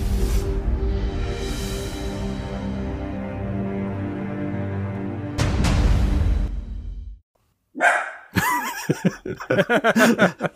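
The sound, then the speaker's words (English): After a long sustained musical tone and a brief pause, a dog, presumably Oliver, barks several times in quick, uneven bursts, loud. “I assume that was Oliver. I forget Eric has dogs too.”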